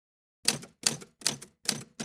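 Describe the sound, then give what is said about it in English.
Typewriter keys clack in a steady, even rhythm, about five sharp strikes roughly evenly spaced, clear with no voices, after a brief silent moment. “Grandpa Mitch called his typewriter the Prosoraptor.”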